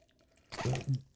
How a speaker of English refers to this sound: Let's get ready for some sour puss soda. Yum. It says it'll puck you up. I'll pour a little bit, but you still have to go first